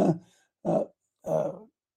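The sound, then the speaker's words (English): Three sneezes in quick succession, each an abrupt, breathy, voiced burst, the last one longer and fuller. Short silences separate them, with no talking. “Bless you”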